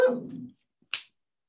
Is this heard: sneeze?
no